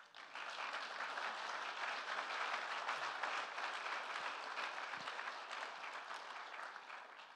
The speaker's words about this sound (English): I'd like to have the staff members stand up very quickly. Just acknowledge them. You can clap.